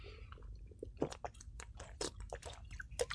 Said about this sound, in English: I gotta drink of flavored water here. Hold on a second.